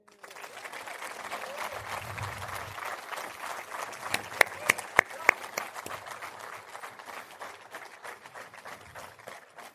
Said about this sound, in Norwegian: Den første vi skal ha på scenen, den skal vi gi en meget, meget varm applaus.